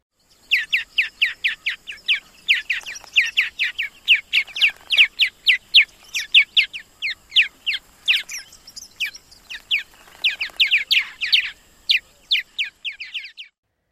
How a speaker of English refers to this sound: Okay, that one was a bit of a stretch, but it's the best I could come up with. Do you have a better way of remembering their call and that this is the purple martin?